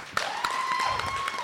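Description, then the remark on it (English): Audience applause for the wait staff at a drinking debaters event: a steady wash of many hands clapping with a few sharper individual claps standing out, and a thin sustained whistle-like tone running through it. “One more round of applause for your wait staff.”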